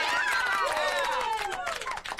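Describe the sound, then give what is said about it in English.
A loud applause sound effect played from a soundboard button: a burst of crowd applause with dense clapping and rising, falling cheers and whoops, lasting a couple of seconds before tapering off. “I hit the applause button, but I don't have that looked up.”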